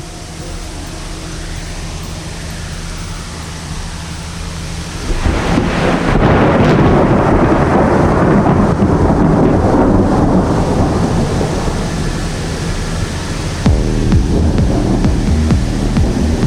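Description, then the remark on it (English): Thunder rumbles from nearby developing thunderstorms on a Monday afternoon, with a very dark sky ahead and blue sky to the sides, a low steady roll that swells into a loud, broad crackling rumble about five seconds in and keeps booming before easing slightly near the end. “As I said, like new thunderstorms getting born here.”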